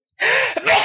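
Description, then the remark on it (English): A short sneeze, a quick breathy intake followed by a sharp airy burst, under a second long with no talking around it. “Cutest sneezes ever.”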